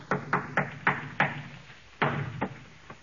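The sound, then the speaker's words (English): Heavy, muffled footsteps thud across the ceiling, about eight dull steps in a quick, slightly uneven stride with a short pause before the last few, and no voices. “Somebody's walking on the ceiling.”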